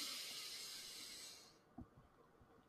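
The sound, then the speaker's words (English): A long, airy inhale through the nose during a breathing exercise, lasting about a second and a half, then stopping. A few soft low thumps follow in the quiet. No one speaks. “we always do our little quick breathing exercise in the beginning. So let's do that right now. In through the nose.”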